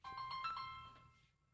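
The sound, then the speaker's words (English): A cell phone ringtone chirps out a short, bright electronic melody of quick tonal notes for about a second, then cuts off. No one speaks over it. “Except my cell phone?”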